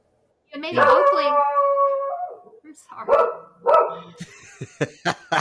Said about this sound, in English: That was a great dog howl. That was a fantastic dog howl. Yeah, she had surgery, so I've left her down here because I have to watch her.